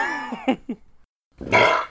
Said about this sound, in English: It's Arabian burps and Arabian beers. I thought that was an Arabian vomit. It comes from my throat, down deep in my gut.